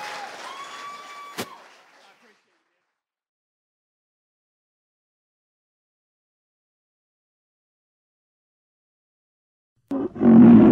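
A loud burst of crowd applause and cheering erupts near the end after a long silence, preceded by a brief roaring, tonal sound effect with a sharp click.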